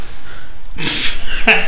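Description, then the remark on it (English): A loud, explosive cough bursts out abruptly, followed a moment later by a shorter, quieter one, with only faint background noise around them. “Don't cough at us like that.”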